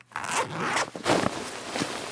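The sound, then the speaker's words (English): A book bag zipper is pulled open in a few quick, raspy bursts, with brief pauses between strokes; no voices. “Let's climb out of the book bag now that we're all human size again.”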